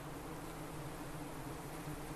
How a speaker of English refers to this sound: Wow, I'm looking at, there must be hundreds of bees here. Hundreds, there's probably 20,000 bees in this area, which is about 100 metres across. A clearing in the pine trees where last year I counted over 2,000 nests.